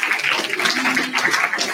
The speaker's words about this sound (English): And then also all of our volunteers, so just give everybody a round of applause.